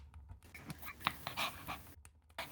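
A dog named Millie pants rapidly and steadily, with quick breathy huffs repeating throughout and a few brief pauses; no one is talking.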